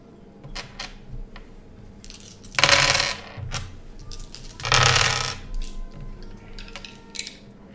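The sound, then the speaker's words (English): Several platinum coins clink and jingle as players toss them onto a pile as the starting cost of a game, with two louder bursts of jangling metal amid scattered small clinks and no talking. “Everybody will toss in their one platinum off the bat, and the first roll may be done.”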